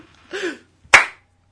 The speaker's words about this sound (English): Slow clap.